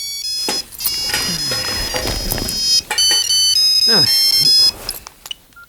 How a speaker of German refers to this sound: wollte gerade die Putzutensilien zurück in die Besenkammer bringen, als sein Handy klingelte.